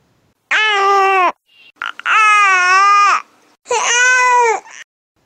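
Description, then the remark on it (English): An infant's tired "owh" cry, a yawn-reflex sound, three loud drawn-out wails with short breaths between, each holding a steady high pitch that dips slightly at the end. No talking. “The second one is indication of tired, which is ow.”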